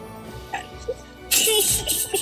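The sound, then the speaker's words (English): A child coughs loudly, a harsh, breathy burst lasting nearly a second, after a second of near quiet with a few small murmurs. “He's farting, now he's coughing.”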